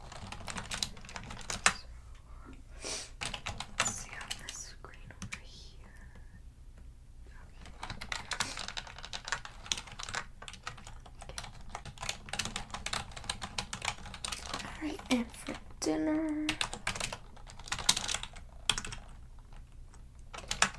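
Steady, irregular clacking of fingers typing on a computer keyboard during a hotel check-in roleplay, with quick bursts of soft, crisp keystrokes and brief pauses, heard alone without speech.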